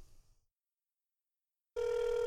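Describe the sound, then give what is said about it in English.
After a brief faint murmur and a stretch of silence, a loud, steady electronic ringback tone sounds on an outgoing phone call, holding an even pitch until the end. “If my phone can be close enough, yeah, let's call him real quick.”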